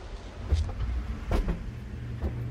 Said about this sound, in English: This is the insectary. That humming is from an environmental growth chamber.